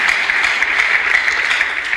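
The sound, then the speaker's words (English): A crowd claps their hands together in a steady, dense wash of applause that holds at an even, fairly loud level for the full two seconds, with no voices on top. “You clap your hands if you to clap.”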